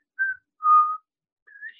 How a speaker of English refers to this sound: I don't know why I whistled that.